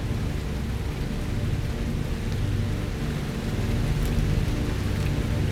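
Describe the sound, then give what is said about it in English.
Steady, continuous rain from a thunderstorm pours down with a dense hiss and deep low rumble, loud throughout, with no voices present, in a video of Matthew McConaughey watching the rain. “Oh, that rain.”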